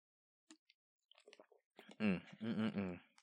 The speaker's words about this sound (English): Ooh, let me drink some of this drink. I'm kind of parched. Excuse me.